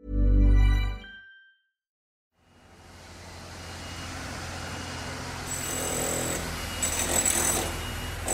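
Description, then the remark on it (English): After a short low rumble and a brief silence, a power drill grinds steadily into concrete high in the stand of Páirc Uí Chaoimh, the GAA's new stadium on the edge of Cork City, in January 2017. A rough whirring noise swells, with a shrill high whine cutting in toward the end. “High in the stand, the drill is boring into concrete.”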